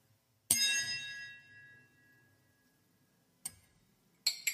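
A glass is struck once with a hard object as a makeshift stand-in for a bell, giving a bright ringing tone that slowly fades, followed by two shorter clinks a few seconds later. No one speaks.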